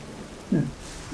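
Steady, soft patter of falling rain, a continuous hiss with a brief low thud partway through. No voices.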